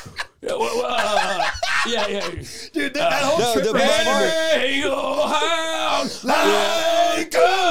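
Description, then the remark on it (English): A man's voice loudly wails and belts a rock-style vocal line with strained, wavering pitch, imitating a 40-year-old man screaming along to a rock song in a garage, sustained for several seconds with brief breaths. “A 40-year-old dude is just screaming … in the middle”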